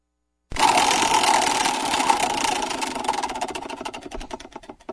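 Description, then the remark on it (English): A prize wheel spins with a rapid, loud stream of ratcheting clicks that gradually slow and spread apart as the wheel winds down. There is no talking. “Let's spin the wheel again.”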